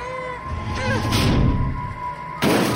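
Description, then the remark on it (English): Sadie's classroom desk, shoved over the top of the stairs, tumbles down to the next landing in a run of loud, booming thuds and splintering crashes, ending with one more sudden heavy impact, all over a steady, faint high hum. “The crashing was like music as the desk fell to the next landing.”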